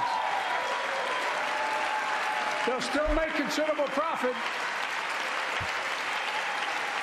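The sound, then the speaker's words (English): A crowd claps loudly and steadily, a dense, continuous wash of applause that lasts the whole clip, with a man's voice briefly speaking over it partway through. “Okay, let's see to a thunderous applause.”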